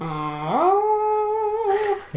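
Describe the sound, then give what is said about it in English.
A voice imitates a yowling cat, one long wavering cry that slides upward, holds steady, then drops away, followed by a short breathy burst and a low grunt. “It's like a discordant freaking, yeah. A cacophony of. It's like a chorus meows. Of cats.”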